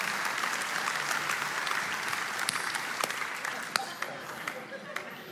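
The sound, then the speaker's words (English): An audience claps together in a dense, steady wash of applause lasting several seconds, with a few sharper individual claps standing out as it gradually thins toward the end. “Go ahead and clap, even though you're struggling with it.”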